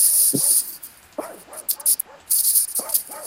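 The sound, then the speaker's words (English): A dog lets out a series of short, whiny barks and whimpers, about five or six yelping bursts spaced irregularly over a steady background hiss. No one speaks. “My dog started going off too, so.”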